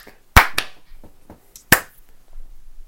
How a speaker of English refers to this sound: I'm going to clap now then.